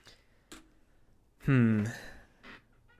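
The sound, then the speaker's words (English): A few sharp, isolated clicks, part of a played recording, spaced roughly a second apart, with a short, louder voiced sound in between, against a quiet background. “That clicking was part of the recording, right?”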